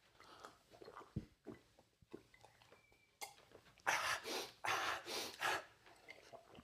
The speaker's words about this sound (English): A little kid drinking a glass of water. Okay, you ready for it? Yeah.